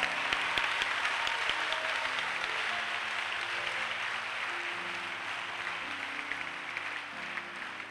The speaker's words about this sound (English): Oh, I'm not enjoying your hand clap.